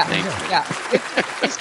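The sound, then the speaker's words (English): A short burst of recorded crowd applause played as a sound effect: dense clapping blended with cheering voices and a few rising whoops, fairly loud, for under two seconds. “You can have some applause too.”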